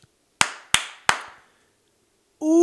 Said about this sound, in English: Okay. You want to clap us in?